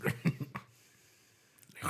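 Several quick, huffing breaths blown into a microphone, then a short silence before another broad rush of breath rises at the end.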